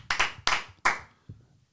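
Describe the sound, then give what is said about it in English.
A short burst of hand clapping played as a soundboard applause effect: three loud, sharp claps in quick uneven succession, then a fainter fourth clap, crisp with no voices. “I was going to get the claps.”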